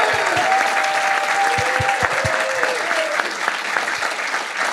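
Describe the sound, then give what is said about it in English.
Steady audience applause for a guest of honor fills the whole stretch, a dense wash of many hands clapping at even loudness, with a few sharp individual claps and faint vocal whoops riding on top. “Let's give our guest of honor a round of applause.”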